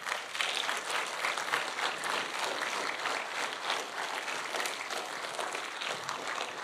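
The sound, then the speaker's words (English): A crowd applauds steadily for those involved in Gold Coast Central Pathfinders, a dense, even wash of many hands clapping that holds at a fairly constant loudness throughout with no voices standing out. “Can you give these guys a huge round of applause?”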